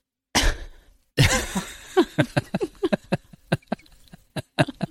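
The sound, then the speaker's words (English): A loud, explosive sneeze bursts out, then a second forceful burst trails into a string of short, rapid breathy puffs. No one speaks. “Bless you.”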